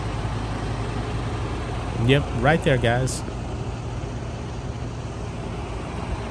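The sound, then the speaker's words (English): An Austin ISD school bus, one of the buses going to the Austin Pride event, runs its engine at a steady idle, a continuous low rumble filling the whole clip, with a man briefly talking over it partway through. “And we even got a clip here of the bus, one of the buses, right there.”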